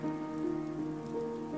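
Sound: rain falling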